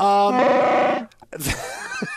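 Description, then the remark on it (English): A Chewbacca-style growling Wookiee voice sings the Christmas carol Silent Night. It gives loud, rough, sustained groans with wavering pitch, a brief pause, then a rising, wailing phrase. “The dulcet tones of Chewbacca singing Silent Night.”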